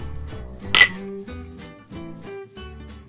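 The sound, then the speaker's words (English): A single bright clink of glasses touching in a toast, sharp, ringing briefly over soft, steady background music. “Well, cheers.”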